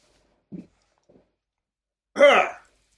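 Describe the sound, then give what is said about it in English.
A brief low burp, then after a short silence a louder, rougher throaty belch rising harshly, with no speech around it. “I just burped and was sick of it in my mouth.”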